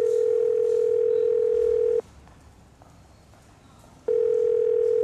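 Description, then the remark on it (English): A steady, mid-pitched telephone ringback tone sounds loudly for about two seconds, stops for a two-second pause, then starts again, as an outgoing call to Hank waits to connect. No one speaks. “I'm going to call Hank, so everyone, remain quiet, please.”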